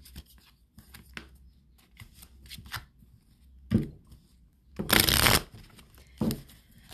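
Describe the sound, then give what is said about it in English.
A deck of oracle cards is shuffled for a love oracle reading, with soft riffling and scattered taps building to a loud, dense burst of cards flicking together, then a final sharp shuffle. “Get one more shuffle.”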